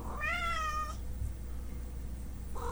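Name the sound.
cat meowing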